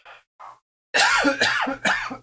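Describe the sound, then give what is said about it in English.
Two short, soft throaty sounds, then a loud burst of harsh, hacking coughs in quick succession from a person choking and sputtering on a Diet Dew soda they drank oddly. “I keep coughing. I don't know why. I think I drank my pop oddly, and I'm choking on it now.”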